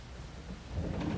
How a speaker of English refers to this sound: Let me open this door real quick so you guys can hear this rain. Hopefully you guys can hear that. But man, I love that. I love the rain, man. I live in Florida.